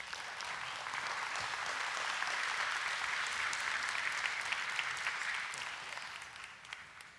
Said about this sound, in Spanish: vamos a darle a ella un fuerte aplauso.